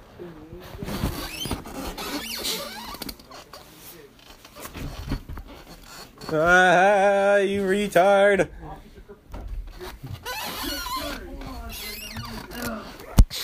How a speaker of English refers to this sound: This chair's squeaky.